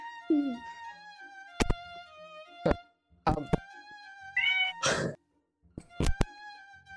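A cat gives a short meow, and a brief mewing cry follows a few seconds later, over a soft, steady musical drone with sharp clicks scattered throughout. No one speaks.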